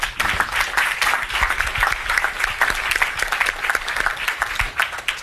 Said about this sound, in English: Please, a round of applause for that team,